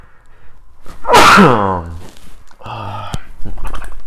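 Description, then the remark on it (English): A single loud sneeze bursts out with a sharp breathy blast and a voiced tail, followed by a short muffled vocal sound and some sniffling. “I gotta sneeze again.”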